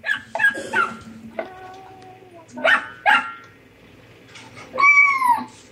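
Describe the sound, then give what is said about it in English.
Several short, high-pitched puppy yips and barks in quick bursts, with a drawn-out kitten-like mew near the end, from cute puppy and kitten videos played to a child. Fairly loud, with no talking. “they sit down, and there's some cute puppy and kitten videos that come on, and the child eventually figures out that they are the ones controlling whether or not the kitten comes on or the dog comes on.”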